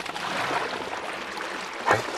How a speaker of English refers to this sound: A little bit of water spilling out now, and as I keep pulling more of the boards